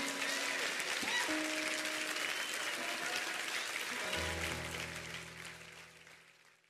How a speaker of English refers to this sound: Now clap your hands real big.